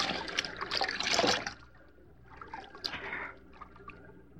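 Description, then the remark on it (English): Water trickles and burbles steadily, a stream with a louder gushing stretch at first that eases into softer splashing and dribbling. “we found water already. There it is, Nails. The stream, all right.”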